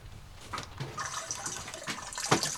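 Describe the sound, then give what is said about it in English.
Quiet, irregular drops and splashes of water fall against a soft liquid background, with a few more distinct drips spaced unevenly over a couple of seconds. “There is also some drops. Drops? A bit of water.”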